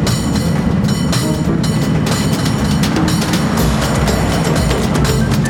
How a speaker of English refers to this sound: Wind in our hair. You can feel the whole cable car vibrating, bell ringing. Yeah.